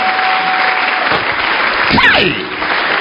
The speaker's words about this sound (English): Can you please put your iPad down and clap your hands